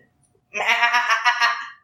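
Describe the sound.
A person imitates a goat with one drawn-out, wavering bleat, loud, rising after a short silence and trailing off; no talking around it.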